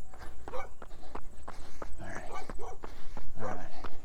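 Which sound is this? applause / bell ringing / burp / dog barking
dog barking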